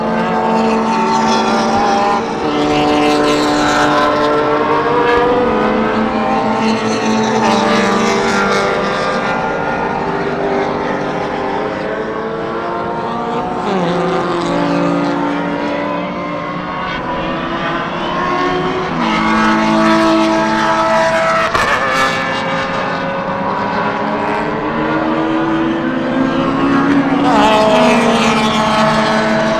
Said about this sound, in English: And here come the cars again. Still loud.